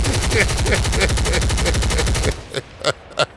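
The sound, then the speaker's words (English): Rapid automatic gunfire rattles in a loud, continuous burst for about two seconds, then cuts off, followed by three separate sharp single shots spaced out at the end. “Choppers.”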